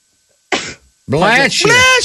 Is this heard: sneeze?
yes